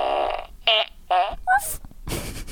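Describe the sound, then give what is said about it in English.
A quick series of buzzy, wavering fart sound effects from a sound effect machine, four short bursts in a row, followed by a noisier sputtering tail, loud with no talking. “I gotta get another sound effect machine. I need this fart, these farts, but I also need one that does other sounds.”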